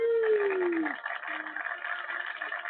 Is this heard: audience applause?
no